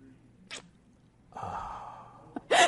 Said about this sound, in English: There's some heavy breathing.